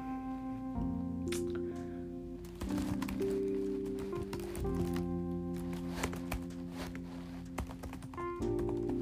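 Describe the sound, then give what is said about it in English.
Irregular bursts of quick keyboard clicks, typing in uneven runs, over a steady tonal hum that shifts pitch a few times. No one speaks. “Oh, also, if I'm not talking, it's probably because I'm typing. You might be able to hear it.”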